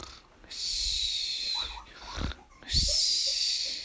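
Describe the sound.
A person imitates snoring: two long, hissing breaths, each followed by a low rattling snort, in a slow, exaggerated rhythm with no talking.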